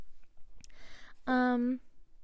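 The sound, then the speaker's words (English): A brief click and a soft, airy slurp of someone sipping a drink up close, followed by a loud, sustained satisfied 'ahh' from the drinker. “Take a little sippy sip of my drinky drink.”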